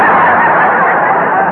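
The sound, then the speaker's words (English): A bird honks as it flies away, a loud, raspy goose-like honk blaring continuously for over a second, harsh, then cutting off abruptly. No one talks over it. “That's the only bird I've ever seen with a mustache.”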